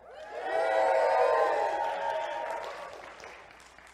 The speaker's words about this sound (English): And so we give you a big cheer from this venue, and why don't you cheer back and we might even hear you, okay? We give you a cheer.